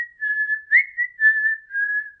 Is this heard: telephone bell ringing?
no